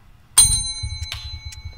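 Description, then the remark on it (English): A single bell is struck sharply, ringing out with bright sustained tones that linger over a low rumbling background, with a couple of softer metallic taps following. “All right, you hit the bell.”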